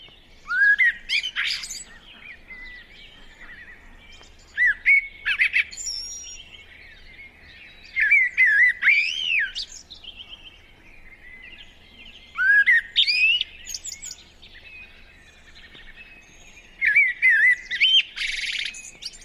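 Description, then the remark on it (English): A blackbird gives loud, chattering alarm calls in five short bursts spaced a few seconds apart, clear against a quiet background with no voices. “When an individual is alarmed, it produces a loud, chattering call that may, on occasion, be drawn out into a long, undulating screech.”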